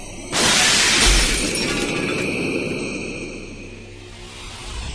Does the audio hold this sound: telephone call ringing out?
no